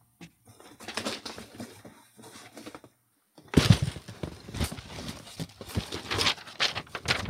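A sheet of paper with writing on it, received as mail, being handled: soft crinkles and rustles at first, then louder, sharper crackling and rustling bursts as the sheet is unfolded. No one speaks.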